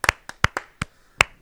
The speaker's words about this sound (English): The Austin Peay Women's Golf Team is Ohio Valley Conference champions for the first time ever and their last chance ever. Round of applause.